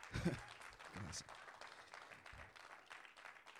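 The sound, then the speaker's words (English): A crowd applauds steadily for several seconds to welcome first-time guests, the clapping dense, with some voices mixed in beneath it. “And let's give it up for our first time guest, everybody. Let's give them a hand clap.”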